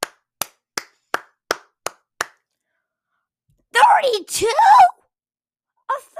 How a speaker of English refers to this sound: We just need to clap.